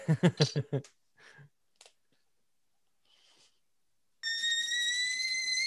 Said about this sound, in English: Someone get the kettle. Oh, shit. That scared the shit out of me. It's like something is exploding. Something is about to explode.